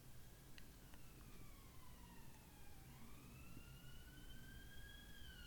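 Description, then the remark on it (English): An emergency vehicle siren wails in long, sweeping rises and falls, faint beneath a steady wash of background noise, with no voices present. “That despite what's going on in the world, sirens and viruses and everything else”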